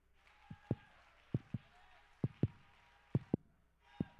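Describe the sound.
A deep, thudding heartbeat in steady lub-dub pairs, about one beat per second, loud, over a faint hazy wash of background voices.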